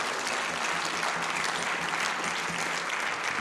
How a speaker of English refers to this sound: But you, as God's people, clap your hands unto the Lord and thank God for it.